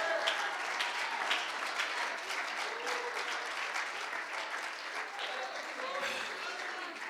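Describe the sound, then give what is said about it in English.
A crowd applauds steadily in praise to the Lord, many hands clapping in a dense, continuous patter with faint voices and cheers mixed in throughout. “Oh, clap your hands to the Lord and give him praise.”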